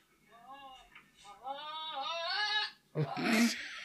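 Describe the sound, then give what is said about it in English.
A goat bleats loudly in long, quavering calls, two or three wavering cries, followed by a harsh burst of noise at the end. “And the goat's going to sing us out here.”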